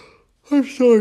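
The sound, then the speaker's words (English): A voiced yawn: a short, breathy vocal sigh in two drawn-out parts with a steady, slightly falling pitch, loud against an otherwise quiet background. “I'm sorry to yawn.”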